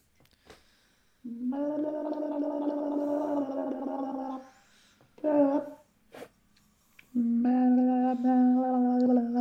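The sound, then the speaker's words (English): A voice imitates a dial-up modem connecting: a long, buzzy droning tone, a short warbling burst and a click, then another sustained nasal drone, all loud and with no talking. “He's just plugged in his modem.”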